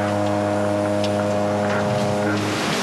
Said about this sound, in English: That's the sound that I wanted to play talking about Arkansas Ole Miss. Please. All right, that was the boat race